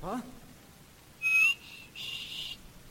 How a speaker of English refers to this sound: Oh, by the way, would you mind listening to me whistle? I'd like to practice a moment.